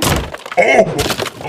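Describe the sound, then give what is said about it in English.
A wooden bookshelf holding books, including Bill Clinton's My Life, is smashed apart in a video game: loud, crunching wooden impacts and splintering cracks, with two or three heavy hits in quick succession. “I'm gonna destroy this fucking bookshelf.”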